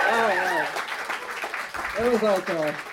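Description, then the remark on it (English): A crowd at a reading event claps steadily and fairly loudly for a few seconds for the evening's readers, with scattered whoops and cheering voices rising over the patter of hands near the start and again toward the end. “Yeah, you can applause more than that.”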